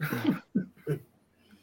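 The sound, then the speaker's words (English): A voice makes three short, nasal grunts in quick succession, imitating a pig's oinking. The first is longest, followed by two clipped snorts, fairly loud, with quiet in between. “Because he's a pig, but that's kind of what I was going for.”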